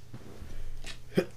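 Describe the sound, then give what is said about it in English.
A short, fairly soft sneeze: a quick breathy intake followed by an abrupt, hissing burst, with no talking around it. “Bless you.”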